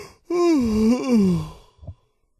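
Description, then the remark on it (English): A person lets out one long, voiced yawn, rising and then sliding down in pitch over about a second, followed by a brief soft exhale and then silence. “You're yawning you really too.”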